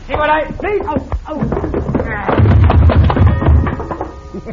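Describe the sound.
A punch lands with a sharp smack as Cisco hits a coyote, who slams into a wall and knocks a clock down in a clatter of heavy thuds, with voices shouting over the commotion.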